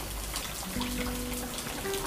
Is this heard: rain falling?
yes